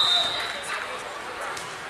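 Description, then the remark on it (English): A player slaps a volleyball with her hand a couple of quick times before serving it at a volleyball match. The slaps are sharp but not loud, with a steady crowd murmur and voices in the background. “Middleton slaps on it a couple of times and knuckles it across to Rusher”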